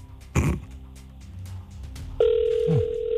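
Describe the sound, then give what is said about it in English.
A steady electronic ringing tone of an outgoing phone call, placed again to a number by the Biggs and Barr Show, starts partway through and holds loud and clear to the end, after a brief thump and some low background rumble; no one speaks. “So we'll call that number again. Excellent. There we go. It's ringing.”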